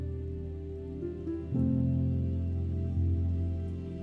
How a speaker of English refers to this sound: This week's meditations are full of water sounds.